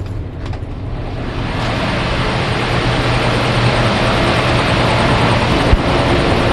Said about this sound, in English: So what you're hearing right now is you're hearing the sound of a compressor running that operates the pneumatic systems throughout the office tower.